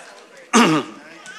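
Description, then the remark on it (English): A single loud throat clearing into the microphone, lasting about a quarter second with a raspy, rough burst, surrounded by quiet room tone and no talking. “Clear my throat there on the mic.”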